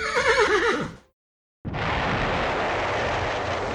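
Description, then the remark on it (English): A voice imitates a horse's whinny, a loud, quavering neigh lasting about a second. After a brief silence, a steady rushing roar starts abruptly and continues to the end. “Giovanni flies the Pegasoo up in the air and gives out a nice horse sound.”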